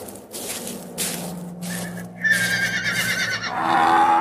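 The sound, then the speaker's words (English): A horse named Little Bill lets out a long, loud whinny, its shrill, wavering cry rising and trembling over a few seconds after some brief shuffling noises. “He gave me this bag of silver coins and that horse over there, Little Bill, which I'm getting on to leave right now.”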